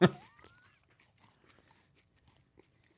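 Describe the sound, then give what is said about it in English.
A loud crunch as someone bites into a crispy rice candy bar, followed by faint, scattered chewing clicks and crackles that fade out. “Very crunchy.”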